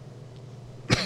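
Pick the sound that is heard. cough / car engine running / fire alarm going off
cough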